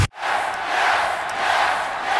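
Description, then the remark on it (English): A large WWE arena crowd roars and cheers in a dense, sustained wash of noise that stays loud and steady throughout, with no single voices standing out. “The reason they cheer for him is because he works and he earns it.”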